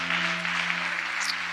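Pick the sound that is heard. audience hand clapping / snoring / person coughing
audience hand clapping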